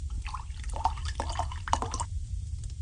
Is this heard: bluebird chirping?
no